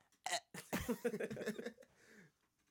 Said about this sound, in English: A couple pats on the back, he'd be all right. He just burps. Yeah, it's good. A little gassy, that's it.